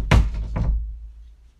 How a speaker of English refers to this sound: She yelled and she ran upstairs and slammed the door hard.